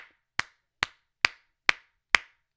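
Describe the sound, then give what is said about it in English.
Five loud, sharp hand claps land at a steady, even pace, each a crisp smack with a quick decay, demonstrating how one audience member clapped loudly and consistently for 45 minutes at a ticketed event. “So the four of us are sitting there, and there's one human that just clapped really loudly, consistently for 45 minutes like this.”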